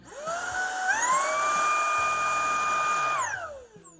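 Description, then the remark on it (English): A Taneko cordless stick vacuum cleaner spins up and runs at max mode, a loud high-pitched motor whine with a steady harmonic drone that rises in pitch, holds, then winds down at the end. “And now max mode for both of these.”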